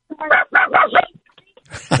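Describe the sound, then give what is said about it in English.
A dog barks at the people present four times in quick succession, loud, followed by a short pause and another burst of sound at the end. “The dog is barking at us.”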